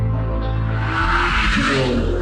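A Ferrari sports car engine roars loudly and steadily, its revving growl swelling into a rushing whoosh as the car speeds by. No voices are heard.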